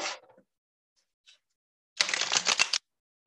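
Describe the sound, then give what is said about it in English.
A short burst of a deck of tarot cards being shuffled during a tarot reading, a dense rapid riffle of crisp paper flutters lasting under a second, preceded by a brief flick and a tiny tap, with no voices. “good shuffle. Weird.”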